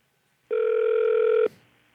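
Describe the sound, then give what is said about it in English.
A single steady telephone ring tone heard over the line on a call to PetSmart, a mid-pitched electronic buzz lasting about a second, followed by a faint click and hiss. No one speaks. “Thank you for calling PetSmart.”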